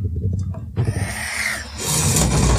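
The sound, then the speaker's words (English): A chair creaks loudly, starting with a low groan and then a drawn-out, squeaky strain that swells and grows harsher toward the end, with no voices. “Damn, loud ass chair.”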